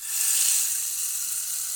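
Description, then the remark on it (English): A rain stick pours out a steady, bright hiss of tiny pattering grains, sustained and fairly even in loudness for the whole stretch, with no voices over it. “We haven't played with the rain stick very much.”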